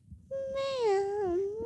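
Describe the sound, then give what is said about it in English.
A child's voice imitates a cat with a single long, drawn-out meow that dips and rises in pitch. It is fairly loud, with faint background murmur and no speech. “What's the cat say?”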